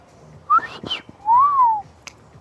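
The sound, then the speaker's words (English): A person imitates the droid R2-D2's beeps with whistles: a quick rising chirp and a few sputtery bursts, then a longer, louder tone that swoops up and gently falls, ending with a faint click. “Okay, so I'm better at R2-D2, like... Beep boop.”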